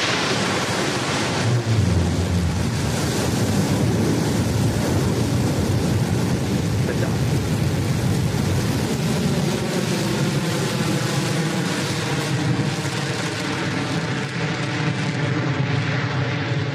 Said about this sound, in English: And that BE-3 engine rumble really coming through as the vehicle approaches the maximum dynamic pressure